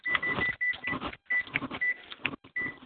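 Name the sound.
microwave oven beeping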